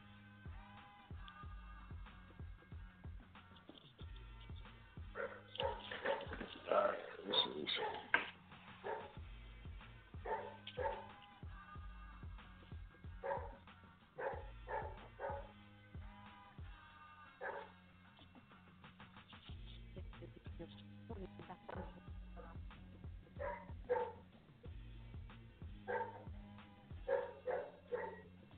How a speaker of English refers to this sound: And I do apologize for the dog barking. I'm not at home right now.